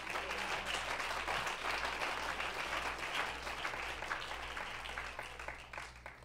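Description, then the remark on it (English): An audience claps hands to the Lord during a sermon in a dense, sustained burst of applause. It is steady and fairly loud throughout, easing off slightly toward the end, with a low hum underneath. “Clap your hands to the Lord here now.”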